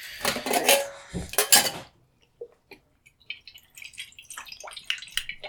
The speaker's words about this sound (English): Okay, I am pouring in. I'm pouring in the fixer now.